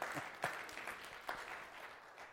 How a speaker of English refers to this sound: That's another place to clap your hands and praise the Lord.